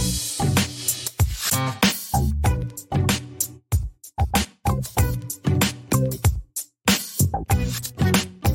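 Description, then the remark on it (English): A loud mosquito-like buzzing that comes in choppy, rhythmic pulses with brief gaps between them, heard on its own without any talking. “Because when the mosquitoes are out, it's going to get real.”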